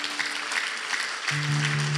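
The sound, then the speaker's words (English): An audience claps in a dense, steady burst of applause that holds at an even loudness, with a low sustained hum rising beneath the clapping partway through. “If I were you, if I were an Ethiopian, I would clap and praise the Lord.”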